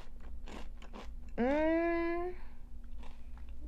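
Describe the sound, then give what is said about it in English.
Crisp crunching of potato chips in a few short bursts, broken up midway by a brief rising, tonal vocal sound before the chewing crunches resume. “I'm so sorry for crunching on these chips, honestly.”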